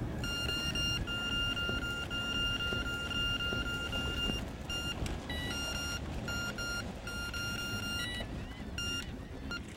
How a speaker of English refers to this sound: That comes from my electronic bite alarms. Oh, cool. Yeah. Mind if we check it out? No, go right ahead. So what happens is that this system here allows me to know which rod is getting a strike.